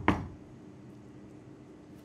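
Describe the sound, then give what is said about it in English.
A single sharp knock on a door, followed by about two seconds of quiet with no voices. “You hear a knock on the door.”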